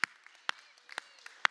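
Applause thins to a few sharp, bright claps at a steady half-second beat, with fainter scattered claps between them, fairly quiet overall and with no talking.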